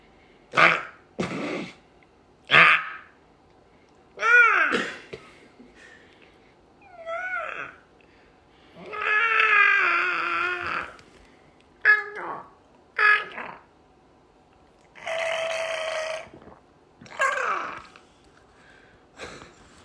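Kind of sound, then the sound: vocal imitation, person imitating bird calls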